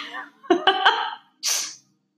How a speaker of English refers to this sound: Watch right here. This whole clip is going to be silent because it's just me sniffling.